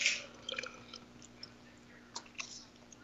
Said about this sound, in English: Okay, I took a nice little drink of lemon water there.